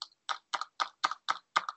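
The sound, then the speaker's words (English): A Quarter Snacks pen is clicked and tapped against a countertop in a quick, steady rhythm, about seven sharp knocks, some doubled, fairly quiet, with no one speaking. “I'm clicking a quarter snacks pen on the counter just to think and buy some time. You might have heard that.”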